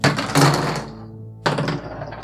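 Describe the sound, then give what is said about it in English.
Six-sided dice (d6) are rolled for a disaster roll in a game, two dice clattering across a hard surface in two bursts: a loud rattling tumble that fades out, then a second shorter clatter. No one speaks. “For every empty trouble box, roll a d6.”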